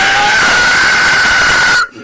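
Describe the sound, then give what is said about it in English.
A voice imitates a monster scream: one loud, harsh, raspy shriek held steady for nearly two seconds, with a thin whistling edge, then cut off abruptly. “Dude, it is such your monster scream.”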